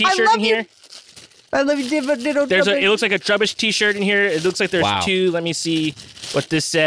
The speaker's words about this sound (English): Hey, this is the sound of me opening a package. Oh, yeah. This says literal trash with Trubbish on it.